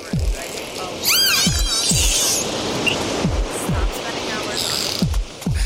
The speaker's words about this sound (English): Heart number three is a dolphin heart.